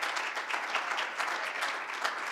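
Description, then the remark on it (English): A church audience claps steadily for a member about to go on a youth missions trip to Brazil, many overlapping hand claps blending into a dense, even wash of applause with no voices standing out. “Give her a hand clap.”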